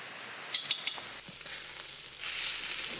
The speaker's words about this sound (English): be sure to put hot oil on the back burner if you're frying anything. They're just going to take a few minutes to finish frying. They'll get nice and golden brown really quickly, so don't take your eyes off of them.